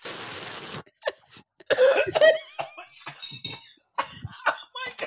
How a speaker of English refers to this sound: he's dying a little bit. He's choking. One of those choking fits.